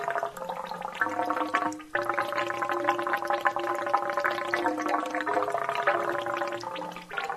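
A homemade instrument built from furniture, wood and rain gutters plays steady, resonant droning tones, shifting pitch a few times with a brief dip near two seconds. No voices are heard.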